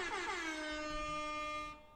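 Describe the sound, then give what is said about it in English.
A single loud, sustained air horn blast with a bright, buzzy harmonic tone, holding steady for nearly two seconds before cutting off abruptly. “It's a fucking air horn.”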